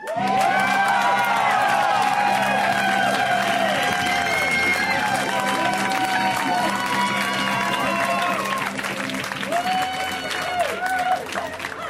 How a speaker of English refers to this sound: Thank you for the claps, everybody.